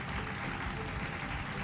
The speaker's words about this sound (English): All right, friends, now the plane is going to land on the ground, and sometimes it might feel a little bumpy. Pretty quickly, some people clapped.